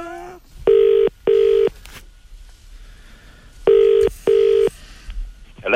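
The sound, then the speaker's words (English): A telephone ringing tone heard down the line as an Italian man rings an Irish landlord: two double burrs, each pair of short electronic rings followed by a pause, fairly loud against a quiet background. “And he's ringing a landlord, an Irish landlord.”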